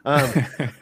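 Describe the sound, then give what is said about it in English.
A person coughs, a voiced, throaty bark followed by two shorter coughing bursts in quick succession, with no talking around them. “I'm going to like a cough again.”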